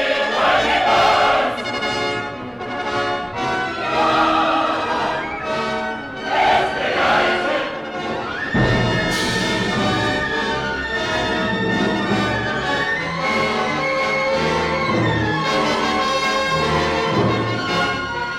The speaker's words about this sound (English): Okay, so what we've just heard is the crowd on Senate Square saying, don't do it, don't shoot, when Nicholas brings his artillery, and then the first cannonade.